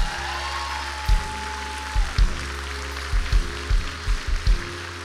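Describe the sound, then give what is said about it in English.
An audience claps together as a clap offering to God in a steady, dense wash of applause, with several louder accented beats, while low sustained keyboard chords hum underneath. No one speaks. “If you receive that right now, give God one more clap offering.”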